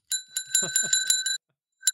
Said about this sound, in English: I got a bell now.